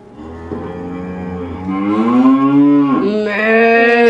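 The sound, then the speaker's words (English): Cows moo loudly in long, drawn-out, rising and falling calls, one low moo running into another with barely a pause. No one speaks. “cows since we played that earlier, remember?”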